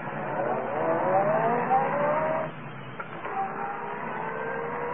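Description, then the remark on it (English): A car engine is started and revs up with a climbing whine for a couple of seconds, then drops back and keeps running at a steadier pitch, fairly loud, with no voices. “Well, then start this car.”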